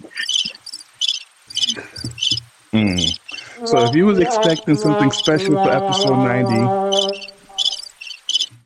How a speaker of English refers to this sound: I can do the crickets. Hold on.